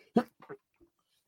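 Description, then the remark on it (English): A sudden, loud sneeze bursts out, followed by a couple of softer, breathy sounds and a faint trailing noise; no one speaks. “Sneeze on the truth.”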